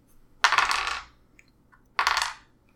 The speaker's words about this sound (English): Roll escape, but you get to roll an extra die for opening door, so you roll four dice.